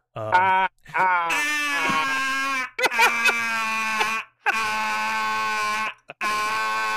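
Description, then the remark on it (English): A voice imitates the grating laugh Jared Leto used in a film role, likened to an alarm clock: several loud, nasal, buzzing bursts in quick succession, separated by brief gaps, with no other talk. “Like an alarm clock.”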